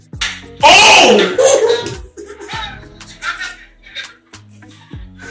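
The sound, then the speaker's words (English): Several sharp, loud slaps land at irregular intervals as a man is struck by hand, mixed with shouting and excited voices in the background. “Well, they're actually hitting the guy.”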